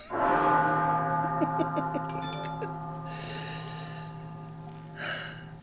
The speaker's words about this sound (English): Speaking of total collapse of electrical infrastructures, I think I hear a bell ringing.